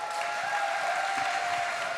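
An audience applauds on Father's Day to welcome back a guest absent for over two years since COVID, with dense, steady hand clapping that fills the whole moment, a loud continuous wash of claps with no single beats standing out and no one speaking over it.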